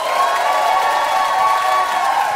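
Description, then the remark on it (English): A live audience claps and cheers to vote for Gary Richardson as the greater barbershop PhD, a steady, loud roar with whoops and shouts riding over dense applause for the full couple of seconds and no one speaking on top. “If you think the greater barbershop PhD was Gary Richardson, clap them hands.”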